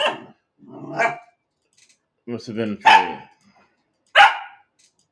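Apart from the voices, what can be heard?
dog barking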